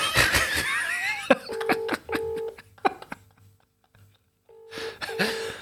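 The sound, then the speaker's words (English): A phone ringback tone sounds in short double bursts, repeating several times as a call to a wife goes unanswered, framed by bursts of laughter at the start and end. “See, I don't know if you get this with your wife, but when you phone them and they don't answer, and you're like, you are never not on your fucking phone.”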